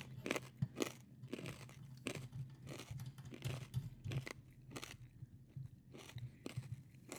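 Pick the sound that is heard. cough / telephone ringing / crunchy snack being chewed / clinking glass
crunchy snack being chewed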